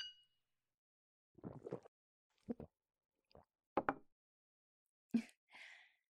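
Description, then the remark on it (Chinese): A single bright glass clink from a toast at a restaurant dinner, with red wine and white liquor, rings out at the start and fades quickly, followed by a few soft knocks, gulping sounds and a breathy exhale, with no talking. “来，干杯。”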